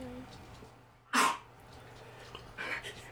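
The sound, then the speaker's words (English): A single small, short cough against a quiet background, followed a moment later by a fainter, softer burst of noise. “That little cough, man.”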